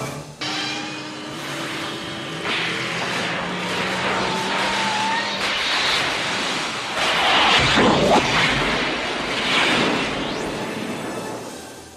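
A Land Rover's engine runs steadily with rumbling road and wind noise, swelling louder midway as the vehicle seems to pass or accelerate, with no voices heard.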